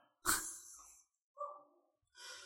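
A pet dog, freaking out for no apparent reason, barks and yelps in three separate outbursts, the first harsh and drawn out, the next two shorter and higher, fairly quiet, with no talking.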